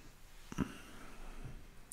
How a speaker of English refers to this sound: This blue pencil that I just picked up. This is a polychromos pencil. Phthalo blue, number 110 from Faber-Castell.